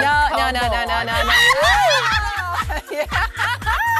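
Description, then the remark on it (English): A person imitates an egg-laying hen's excited clucking with quick, rhythmic vocal bursts and rising squawks, loud, with other people laughing along over it, in a clip from Full Circle. “It's an egg-laying. An egg-laying chicken.”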